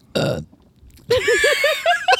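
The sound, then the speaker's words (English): A loud belch after chugging an 11.2% beer: a short guttural burst, a brief pause, then a long drawn-out burp with a wobbling, rippling pitch that rises toward the end. “It's a burp inside.”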